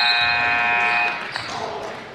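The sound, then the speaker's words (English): A loud, steady basketball buzzer blares for about a second, ending the first half at Coleridge High School as a put-back rebound shot misses, before cutting off, leaving a noisy crowd murmuring and shouting in a gym. Coleridge Titans lead the Delta Panthers 34-24. “Rebound put back at the buzzer.”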